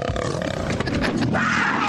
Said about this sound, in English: What the hell? There's a goddamn cougar in the car. Well, there's a cougar in the car. I put it in there.